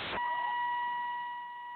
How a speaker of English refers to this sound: Sounds like he's getting out of his car and the beeper's going off. He must be getting out of his car.